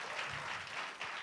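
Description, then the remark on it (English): A brief, fairly soft patter of clapping from a few hands, a dense crackly texture that holds steady for about a second with no voices over it. “Oh, you can clap it if you want.”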